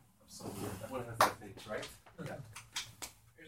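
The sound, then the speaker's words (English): A single sharp thud of a door being shut cuts through ongoing talk during a lecture on the Torah, loud for an instant before the voices carry on. “get the doors closed.”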